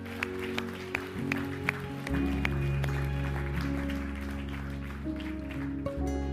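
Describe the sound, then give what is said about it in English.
A church audience applauding for those who had just prayed: a steady crackle of clapping with a few sharper claps standing out, joined after about two seconds by a sustained low musical drone underneath. “Church, can we just give them applause for if they said it?”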